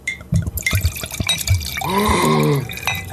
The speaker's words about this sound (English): just got a contact high from my pouring of my liquor